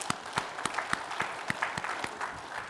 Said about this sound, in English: Can we give God a big clap offering?